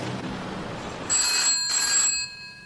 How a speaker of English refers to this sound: This guy, ringing his wife now.